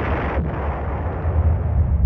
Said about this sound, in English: As far as the residents knew, the volcano was a gentle giant. It had been quiet for more than a half century. But then Mount Pelee came roaring to life. It started off as a rather moderate explosion.